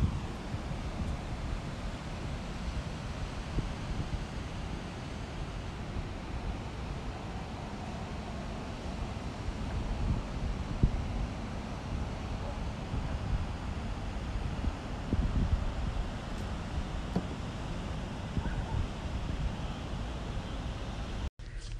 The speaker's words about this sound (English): I only called back so I could let you hear the waves better. Different part of the planet. Same ocean.